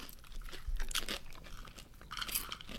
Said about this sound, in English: These taste like sugar smacks. The ones that are really coated? Very sweet. Very sweet. I think this kettle corn's underwhelming. I like it. It's just very sweet. I think it's fine.